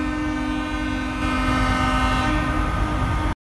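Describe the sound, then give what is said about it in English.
Loud truck air horns from a truck convoy blare in a continuous, overlapping drone for several seconds, steady, with rumbling low noise beneath and no voices. “This is the honking.”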